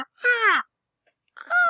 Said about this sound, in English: You feel a salty sea breeze from the ocean, and there's seagulls and stuff.